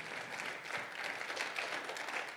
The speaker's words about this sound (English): Somebody give him a hand clap of praise tonight if you're thankful that he's steady for you.